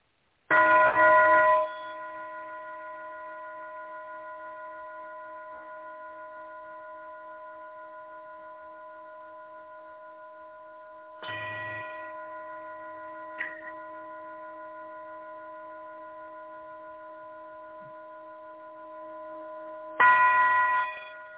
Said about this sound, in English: Now, many different sound tools, like a brass bowl sounds different than a crystal bowl. A smaller bowl can sound different than a larger bowl. So what I'm playing here is a very large brass bowl that is the tone of G. Here we go.